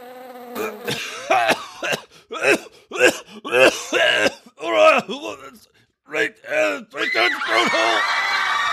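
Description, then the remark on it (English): A man coughs and chokes in a rapid string of harsh, sputtering bursts, fairly loud, after inhaling a gnat while in a store line, ending in a drawn-out raspy wheeze as he struggles to clear his throat. “Do Nothing Man sniffs around behind him, but catches his throat by inhaling a gnat.”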